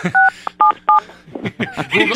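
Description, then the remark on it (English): Three short telephone keypad tones beep in quick succession, each a clear dual-pitched electronic blip, as someone dials a phone to call the radio station, followed by a person talking. “Who are you calling in the middle of me talking to you?”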